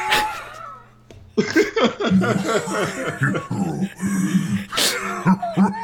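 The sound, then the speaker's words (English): A gravelly, raspy cough followed by a low throaty grunt and some wheezing, hoarse breaths, fairly loud, with a rough, growling character throughout; the sound of the character Roadhog from the video game Overwatch. “So he thought I was playing the game because of your cough.”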